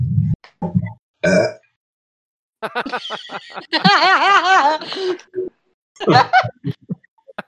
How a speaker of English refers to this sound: And then I burp in her face. There you go.